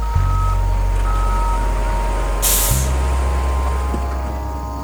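A big truck idles with a steady low engine rumble while movers load packed boxes of household junk into it for donation; a single sharp, loud hiss of air brakes releases before the engine drone carries on.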